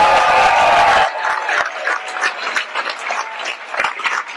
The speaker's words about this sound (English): You're on the north side of Milwaukee celebrating the reopening and rebirth. You're not loud enough. If you're glad you woke up this morning, clap your hands and make some noise.